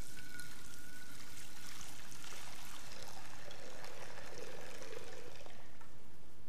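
Water pours steadily into a stone baptismal font in a church, a continuous splashing trickle that runs for several seconds without pause. No one speaks.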